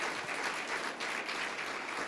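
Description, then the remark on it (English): A crowd applauds steadily, many hands clapping in a dense, even patter with no voices over it, in appreciation of a girls' Bible quiz team who received high honor awards. “So give them a round of applause to let them know how much you appreciate them.”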